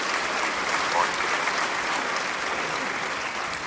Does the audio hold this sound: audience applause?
yes